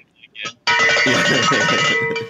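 A loud bell, rung by Walter as a notification cue, rings continuously for almost two seconds, clanging in a dense, sustained burst, after a couple of brief, soft sounds.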